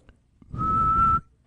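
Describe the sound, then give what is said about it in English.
A person whistles one steady, piercing note lasting about two-thirds of a second, mimicking a referee's whistle, with a breathy, noisy rasp underneath. Fairly loud, with no talking. “That was a referee's whistle, my attempt at a referee's whistle.”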